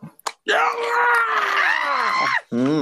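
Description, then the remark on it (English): A person voices a long, raspy, strained scream imitating a zombie, held for about two seconds before a short gasp and a brief vocal tail, loud. “Like it's spring loaded and looks at you and takes off running straight for you. Bring it, because I got motorcycle combatives. Screaming.”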